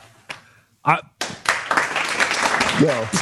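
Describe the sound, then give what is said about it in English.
Hands clap in a rapid, steady burst lasting a couple of seconds, loud and crisp, after a short exclamation, with brief voices cutting through the clapping. “I'm gonna clap for that too.”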